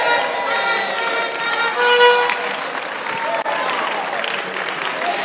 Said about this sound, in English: If you are not clapping, you are confused.